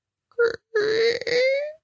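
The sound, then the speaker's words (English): A voice imitates a creaking door: a short strained vocal groan, a brief pause, then a longer raspy creak that slowly rises in pitch before fading out. “So that's like a door creaking.”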